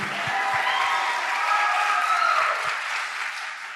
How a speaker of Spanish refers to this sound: Y un aplauso para G2G.